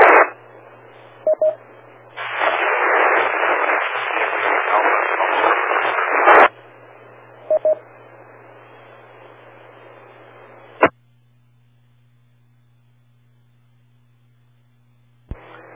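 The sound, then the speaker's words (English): Crackling static on a ham radio call hisses steadily, swelling into a loud burst of noise before fading to a weaker hiss, then cutting off with a click into near silence and a faint hum. “I'm hearing a lot of static there.”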